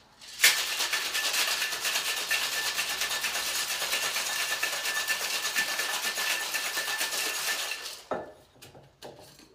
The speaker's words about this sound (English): All right, so we got our grapefruit, we've got our soju, we've got our shrub, our cherry herring, and our gin. So we're gonna shake all this up. I already have a little ice in here.